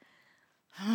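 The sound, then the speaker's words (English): After a near-silent moment, a single sneeze bursts out loud and sudden, a breathy rush with a short voiced tail. “Bless you.”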